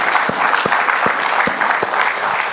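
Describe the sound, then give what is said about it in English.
An audience applauds during a worship service, for how the Lord has used the service and those who shared, in a steady, dense wash of clapping, with a few sharper individual claps popping out at irregular intervals, loud and sustained without any talking. “Why don't we applaud how the Lord has used our worship service today and those who shared.”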